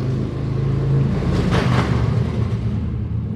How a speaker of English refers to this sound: Welcome to Coconut Grove. Two really, really cool guys just went by in their loud motorcycles.